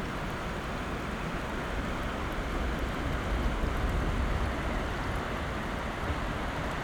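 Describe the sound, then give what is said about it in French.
Distant sea waves out at sea, lower down, make a steady, low, hushing wash of surf, continuous and fairly faint, with no distinct breakers and no voices. “Si on écoute, au loin, plus bas, au large, on devine les vagues.”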